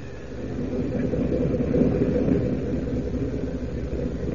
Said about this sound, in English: and then down he goes, skimming close to the water, his cape flicking spray from the towering waves, his ears listening for the telltale rumble of submarine motors. And meanwhile, aboard the Jap U-boat itself...